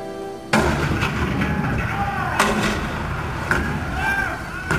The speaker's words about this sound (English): April 12, 1861. Fort Sumter. The cannon spoke for war.